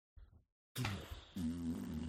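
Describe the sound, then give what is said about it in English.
A voice imitates a fart: a short low sputter, a brief pause, then a loud, long, buzzing raspberry that rumbles on for over a second, alone. “A big old ripper fart. Rolling down the hills.”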